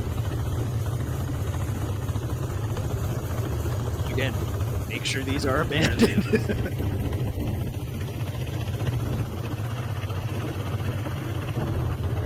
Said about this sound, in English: Now make sure these tracks are abandoned before you attempt something like this, but this is neat. He has motorized rail car.